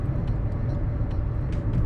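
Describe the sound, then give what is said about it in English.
Steady, loud rumble of road noise inside a moving car, a dense low roar with faint higher hiss and a few brief ticks, continuous throughout with no voices. “I feel like I'm hollering at the phone because I'm in the car and it's like loud in here.”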